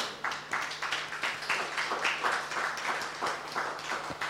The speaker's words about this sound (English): Then clap for the Lord.